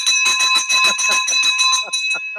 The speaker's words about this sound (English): I love it. How do you like this school bell, like school teacher bell? I love it. It's like you're a deaf 80-year-old guy sitting in his old library with a crackling fire.